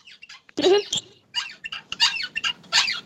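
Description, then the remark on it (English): A person sings a self-composed song with their own voice in shrill, squeaky, dolphin-like chirps and whistles: a rapid run of high, sweeping bursts with short gaps between them, fairly loud. “You got a squeaky song for us?”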